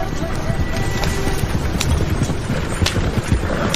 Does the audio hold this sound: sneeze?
no